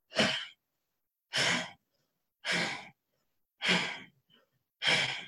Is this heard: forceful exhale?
yes